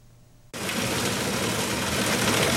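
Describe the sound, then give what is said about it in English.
A low hum gives way abruptly to a loud, steady, hissing roar as a shaved ice machine at a dessert shop starts up and runs continuously, filling a bucket with shaved ice, with no voices. “The shaved ice machine gets going, and once the bucket's full, pineapple syrup is drizzled on.”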